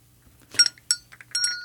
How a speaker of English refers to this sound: Oh, I'm being summoned. I've got to go. Was that the bell from the Dowager Countess's chambers? I think she needs you to draw a bath.